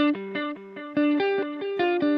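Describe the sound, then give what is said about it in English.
An electric guitar played through a reverb pedal set to a very low level plays a quick run of bright, sustained single notes and short phrases, with a faint, barely noticeable ambience trailing behind them. No one speaks. “And when you've got levels like that, it doesn't, I don't know that you'd be thinking about there's a reverb going on there.”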